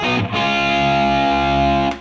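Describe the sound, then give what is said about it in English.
A heavily distorted electric guitar chord, played with the third tuned down, is struck and left ringing, loud and sustained for nearly two seconds before being choked off abruptly. No voices. “Instantly, any amp is gonna scream a little bit more like … if you do that.”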